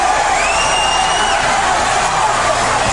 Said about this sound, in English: The adrenaline has got to be flowing because all these fans are on their feet cheering for Ricky the Dragon Steamboat.